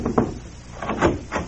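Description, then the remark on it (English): A muffled door closes in the next room, heard as a few soft, dull thumps and creaks spread over a second or so, fairly faint and with no voices. “Now, quiet, but I think I heard a door close in the next room.”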